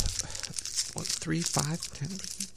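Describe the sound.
Steady crinkling and rustling of paper being handled as a small note, like a Chinese fortune cookie slip but folded many times, is opened, continuing throughout while a voice murmurs briefly in the middle.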